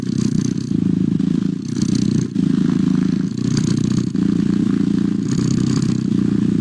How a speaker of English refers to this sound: And finally, here in our good news department, there is a website that lets you actually listen to cat purrs whenever you're kind of stressed out.